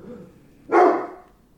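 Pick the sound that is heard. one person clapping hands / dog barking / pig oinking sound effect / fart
dog barking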